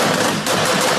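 A loud, rapid burst of sharp, crackling pops from the tailpipes of a car with a straight pipe exhaust modification, backfiring dense and continuous like machine-gun fire, for about a second with no voices.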